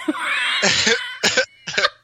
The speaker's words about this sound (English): I can tell it's a good episode whenever you have that sort of that hacking cough whenever you're taken by surprise.